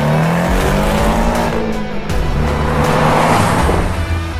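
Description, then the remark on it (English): A car engine revs hard under full throttle with the pedal held down, its pitch climbing steadily as it accelerates, loud, with a brief tire chirp partway through and no talking. “Pedal down.”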